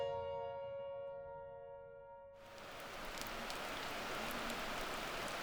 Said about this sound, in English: It's a cool, rainy morning in North Bend. In a parking lot outside the Rattlesnake Ledge trailhead, a small group of 8 Washington Trail Association volunteers are pulling on mud-stained rain gear.